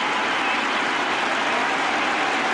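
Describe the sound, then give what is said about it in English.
A cricket crowd roars and applauds as Trescothick reaches his Test century for England against Sri Lanka, sweeping to deep mid-wicket; a dense, steady wash of cheering that holds at the same loud level throughout, with no voices standing out. “You can hear what the crowd think of it.”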